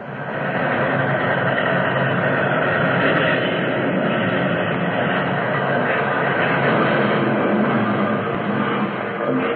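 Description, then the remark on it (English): A train derailing, its rear cars flung off the tracks just after it came out of a tunnel mouth, fills the air with a loud, continuous grinding roar of metal and rumbling rail noise, steady for nearly ten seconds with no voices. “Fearful grinding and crashing filled the air.”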